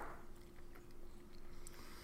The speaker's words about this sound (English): You asked me that question right as I'm chewing something.